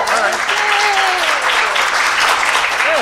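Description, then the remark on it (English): Loud, steady audience applause fills all three seconds, a dense crackle of many hands clapping, with a few whooping cheers rising and falling over it. “Give me applause. Give me yay for us.”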